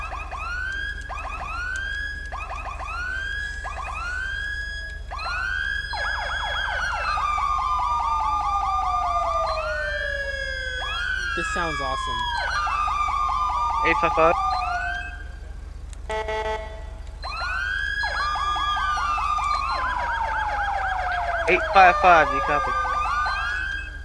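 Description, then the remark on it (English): A police siren test cycles through several patterns: quick repeated yelps, then long rising and falling wails, with brief electronic bursts between. It is loud, with a voice briefly speaking over it. “And that's the siren test.”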